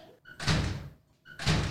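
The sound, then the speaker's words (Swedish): A door closes twice about a second apart, each time a short click followed by a loud, full-bodied thud that quickly fades, with no voices. “Om dörren är låst så... Tror vi att det finns en tanke med det?”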